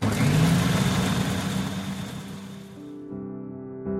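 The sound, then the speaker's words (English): A Magimix food processor whirs loudly as it blends grapes, a dense grinding roar that eases after a few seconds into a steadier, humming motor drone with a rough edge. No voices are heard. “Okay, let's pour it in the Magimix.”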